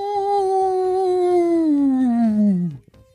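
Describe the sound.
A person imitates a coyote howl for the Coyotes hockey team with one long, sustained tonal wail that slowly slides downward in pitch for nearly three seconds before breaking off, loud.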